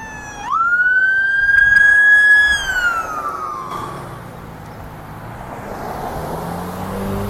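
A loud emergency vehicle siren wails up, holds a rising tone, then drops away as the vehicle passes in street traffic, leaving the steady rumble of traffic behind it. No one speaks.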